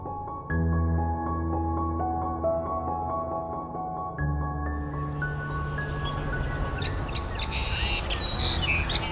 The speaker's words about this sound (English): All right, we got song sparrows. Black-capped chickadees. Crows and Canada geese. But the song sparrow's the loud one here.